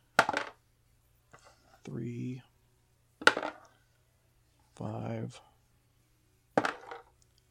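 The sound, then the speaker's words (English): Three sharp clattering bursts of dice tumbling across a table, evenly spaced a few seconds apart, with short vocal sounds between the rolls. “Oh, fuck, I lost my dice.”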